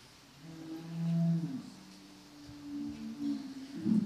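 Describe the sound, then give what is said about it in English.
Cows mooing in long, drawn-out low calls, one after another with a few overlapping, at moderate volume, with no talking. “The cows like this story.”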